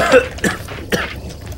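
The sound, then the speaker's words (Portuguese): A short run of rough coughs, three quick throaty bursts spaced unevenly, with a raspy, throat-clearing edge and no talking. “Eu vou pegar um pouco de água pra ti, pra ver se essa tosse passa.”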